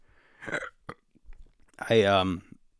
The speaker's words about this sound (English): Never mind that burp. Oh, wow, that felt weird.